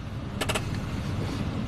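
A car rolls along an unpaved vineyard path in Germany's Ahr valley during the grape harvest, with a steady low engine and tyre rumble, broken early on by a quick burst of three sharp clicks or crunches.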